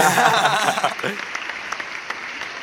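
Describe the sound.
A burst of applause, dense and loud at first with voices cheering over it, then thinning after a second into scattered, fading claps.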